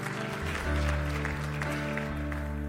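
An audience claps together in a steady, even patter of applause that holds for a couple of seconds, with a low, constant hum running underneath.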